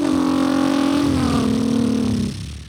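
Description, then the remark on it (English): A voice mimics an old car engine with a steady, buzzing rumble that slowly drops in pitch over about two seconds before trailing off. It's fairly loud, with no other sounds. “That's a car. That's an old car.”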